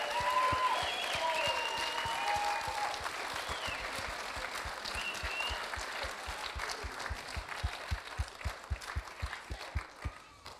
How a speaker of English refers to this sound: Everybody, to your feet, give these guys another round of applause. Take a bow.